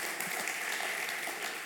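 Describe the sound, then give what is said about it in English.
A crowd applauds steadily, many hands clapping at once into a dense, even wash of sound with no one speaking over it, to thank the staff. “Let's give them a round of applause and thank them for doing such a great job with that.”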